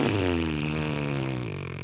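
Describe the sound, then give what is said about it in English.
A voice imitates a fart with one long, loud, buzzy blown raspberry lasting about two seconds, its low pitch wavering before sagging and fading slightly at the end. No talking. “She loves a good fart noise.”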